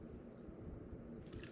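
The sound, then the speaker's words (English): Someone sips vitamin water from a bottle, with soft wet slurping and faint liquid squishes running continuously for a moment, quiet and without any talking. “Have a sip of my vitamin water.”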